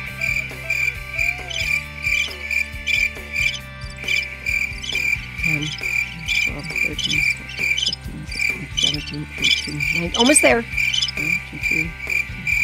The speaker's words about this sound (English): The sound we have sounds like a very common chirping sound.